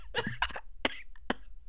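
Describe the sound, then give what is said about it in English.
A man coughs several times in quick succession after doing a put-on voice, a harsh fit of three or four bursts with brief gaps between them. “And yes, doing that voice just made me cough a lot and drink some water, and my eyes are now running.”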